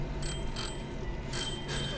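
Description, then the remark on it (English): A bicycle bell rings in four quick, bright dings, two close pairs separated by a short pause, clear over a low rumble of outdoor background noise, rung at a group of people while cruising slowly through a park in the morning. “I love that you rang Alma's bell at them first.”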